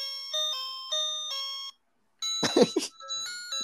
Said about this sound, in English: I have an ice cream truck piano that I got for $5 that makes it sound like an ice cream truck.